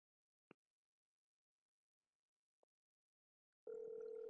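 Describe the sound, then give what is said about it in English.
Two faint clicks sound in near silence, then a loud, steady electronic phone ring tone starts and holds to the end as an outgoing call rings with no answer. No one speaks. “Nobody answers when you call them.”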